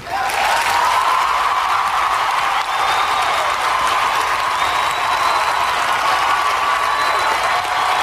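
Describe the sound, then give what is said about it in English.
Thunderous applause from a large crowd in a scene from a Star Wars movie, a dense, steady roar of clapping that holds at full loudness for the whole eight seconds, with a faint high tone threading through it. “So this is how liberty dies. With thunderous applause.”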